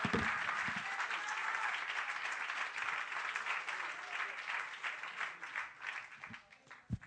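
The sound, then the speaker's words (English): An audience claps their hands during a morning sermon in sustained, dense applause that fills the room, fading slightly toward the end with a few scattered claps. “Come on, somebody clap your hands if you believe it this morning.”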